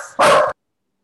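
A single loud, close dog bark, short and sharp, preceded by a brief softer sound and followed by silence.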